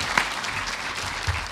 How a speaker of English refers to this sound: Okay, fine. Round of applause, please.